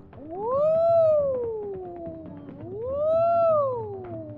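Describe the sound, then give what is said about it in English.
A voice imitates a police siren for the character Sock Cop stopping a speeding car to write a ticket, with two slow, smooth wails, each rising and then sliding back down in pitch, fairly loud over a low background rumble. “All right, well, it's time to hit the sirens and get this guy's ticket.”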